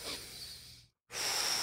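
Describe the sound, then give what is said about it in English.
A voice imitates slow, deep breathing, as done while dropping in on a big wave at Jaws: a long breathy exhale, a brief pause of silence, then a loud airy inhale with a slight whistling edge. “still out at Jaws, it was my whole focus on the ride, because I knew it was a big one, was just breathing.”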